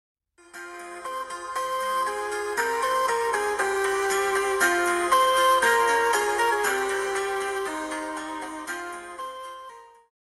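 A bright, chiming phone ringtone melody plays continuously for about ten seconds at a steady, moderate volume while a phone call is being placed, with layered tinkling notes and no voices.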